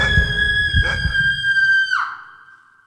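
A shrill, sustained scream from the head of a rotting corpse thrust from the earth holds one piercing pitch for about two seconds, then slides downward and fades out over a low, rumbling background.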